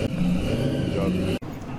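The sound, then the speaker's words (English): A 1956 Chevy pickup truck engine revs loudly in a car park, a deep, throaty rumble that holds steady, cuts out sharply for an instant, then settles back into a lower growl. “Sharon has just made every guy in the car park stop dead, because she has a 56 Chevy that has got to be heard to believe”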